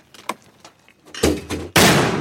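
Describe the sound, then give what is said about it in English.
A mortar round is fired from a metal tube set on a tripod during Marine training: faint clicks, then a hollow thump and a much louder, sharp blast that rolls on in a roaring, hissing tail. “Recently, we watched some Marines train, launching them out of metal tubes set on tripods.”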